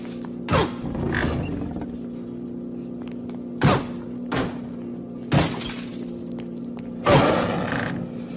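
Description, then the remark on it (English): A car smashes through glass windows in a series of sharp shattering crashes, about five bursts spaced unevenly, over a steady low engine-like hum. No one speaks. “And then I think Nick for when the car actually smashed through the windows.”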